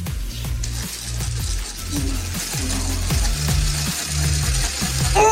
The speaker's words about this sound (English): This is corn on the cob on a drill, and then, not a great idea.